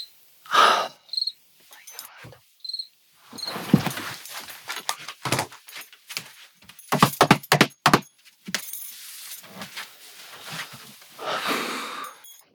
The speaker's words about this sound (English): Million crickets. And so for the past 2 weeks, my whole life has been just trying to not absolutely lose control over these crickets. And the thing about a microphone, and this microphone, is that it picks up everything, right?